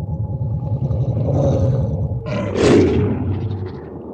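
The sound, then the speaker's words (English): Deep, guttural monstrous growls rumble continuously, then swell into a louder, harsher roar midway before settling back into a low snarl. No voices speak. “Voices deepen into growls, like a virus had spread.”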